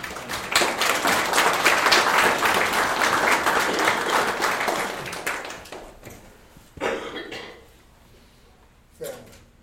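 audience applauding

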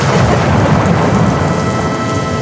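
heavy rain with thunder

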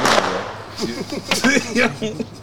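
fireworks exploding outside

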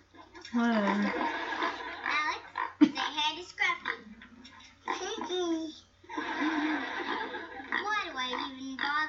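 pig oinking

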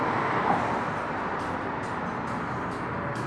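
trucks driving by

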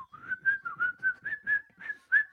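person whistling a tune

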